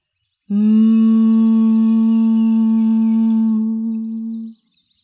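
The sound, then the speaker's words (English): A single steady closed-mouth hum, like a bee's drone, exhaled after a deep breath in through the nose in a breathing exercise with hands braced on the sides of the head, holds one low pitch for about four seconds with rich overtones before stopping, with no talking. “Now take a deep breath in through your nose and exhale, humming with your mouth closed like a bee.”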